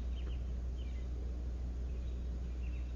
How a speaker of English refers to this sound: And now the sound of the birds. We're just sitting and open and the sound is appearing.